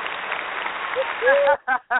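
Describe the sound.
An applause sound effect: a steady wash of clapping and cheering for about a second and a half, then two short, loud voiced cheers.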